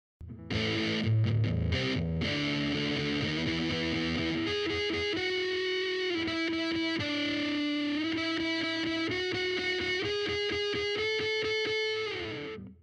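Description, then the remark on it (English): Electric guitar played through a Ram's Head Big Muff reissue fuzz pedal, thick and saturated, with strummed chords giving way to sustained, singing lead notes, loud with no talking. “And this is the Ram's Head Big Muff reissue.”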